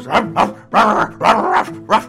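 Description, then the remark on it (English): A person imitates a dog, letting out a quick series of five or six loud barks in an uneven rhythm, some short and some drawn out, with no other talking. “As you get a little closer, that extremely hairy boy comes around the corner from one of the wagons and, like, runs up to you guys on all fours, and he's, like, barking.”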